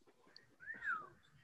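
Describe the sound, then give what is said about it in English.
A single short whistle, a clear tone that swoops up and then slides down over about half a second, moderately loud above a faint, low background hum. “And now that's a whistle.”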